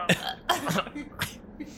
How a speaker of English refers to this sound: Oh, he just coughed up blood. Hey, I mean, he's still alive.